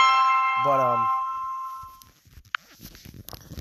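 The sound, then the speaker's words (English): A phone message notification chime sounds once, bright, as a message comes in on a Thursday around 7 p.m., with a short rising tone under it, then rings out and fades over about two seconds, followed by faint clicks and handling noise. “I have messages coming in, phone calls coming in.”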